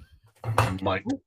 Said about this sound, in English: Wrecking the place. First things first, make sure that your client is okay and they haven't just fallen off their chair. No, I just knocked my plate.